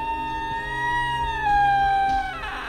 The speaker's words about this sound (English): He unlocked it and pushed his way inside. The door gave a loud creak as it swung open and shut.